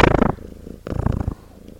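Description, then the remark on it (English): A cat purrs in a steady, rumbling rhythm, with two louder bursts of purring separated by a brief quieter stretch. “The cat actually wound down. Good job, kitty.”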